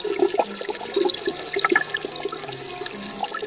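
Rushing water from a waterfall pours steadily for a few seconds, a dense splashing roar with bubbling surges rising and falling, no voices over it.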